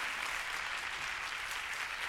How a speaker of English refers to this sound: As you know, the Academy launched, go ahead and applaud, they're good fellows.